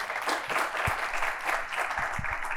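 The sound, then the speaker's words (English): An audience claps steadily for a couple of seconds, a dense, continuous patter of many hands with a few sharper individual claps standing out, clapping to show they pronounce a name as "Moonjaro". “Who, clap your hands if you say Moonjaro.”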